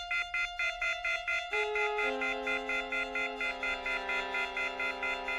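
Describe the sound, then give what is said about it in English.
A string quartet mimics a phone's off-hook warning: a rapid, steady pulsing of high, bright tones, while sustained lower notes enter one after another and hold beneath the beeping. No voices. “I'm going to start with one of the sounds in here that's not a human voice, which is in the beginning you have the string quartet that sounds like a phone left off the hook.”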